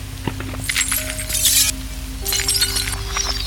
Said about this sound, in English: And so we had all our camera gear and all our stuff, and we were crunching our way up the street to the bombing site, and crunching our way because there was just glass underfoot for hundreds of metres around.